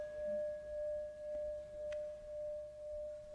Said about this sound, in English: But if we just asked, you know, an ordinary person, what do you hear? I hear a bell.